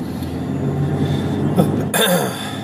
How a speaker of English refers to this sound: Hey, back on. Sorry about that cough there.